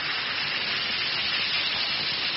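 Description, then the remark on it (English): One or two Alka-Seltzer tablets fizz in a glass of water, a steady effervescent hiss that holds at an even level for a couple of seconds with no voices. “Just drop one or two tablets in a glass of water like this. Listen to it fizz.”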